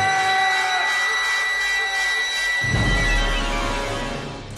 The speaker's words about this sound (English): And then that whistle goes off again. Yeah. I mean, the whistle goes off during the show, but I think this is the only time it goes off during a murder.